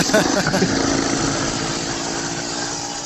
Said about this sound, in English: That sounded like fun. It sounded like a cross between a light aircraft and a very highly revved lawnmower. That was the first bike I rode. That was a 1919 Scott, and it has sort of two levers for adjusting the throttle.